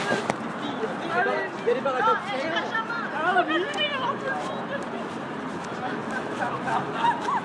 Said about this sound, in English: Just walked past a crowd of French people.